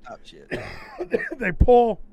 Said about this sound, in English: I've been coughing this whole fucking podcast. I'm so sick, but I just can't. I keep going.